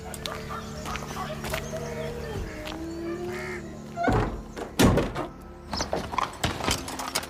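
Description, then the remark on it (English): A heavy door thuds shut, then a second bump and a quick run of small clicks as a lock is turned, all over a low, steady background hum. “Close the door behind me. Don't let anyone else in. Keep it locked.”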